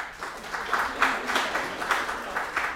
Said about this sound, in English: All right, I got to a few of you though, right? A few of you. I don't even know if I have to check the applause meter on this one, but just to make it official,